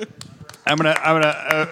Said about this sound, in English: I'm giving you the Kelly Clarkson applause. Just get a little Foley action going.